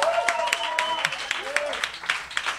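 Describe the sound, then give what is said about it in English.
An audience breaks into a round of applause, with dense, steady clapping and a few whoops or cheering voices rising over it, moderately loud. “So if we could give a round of applause for Noel.”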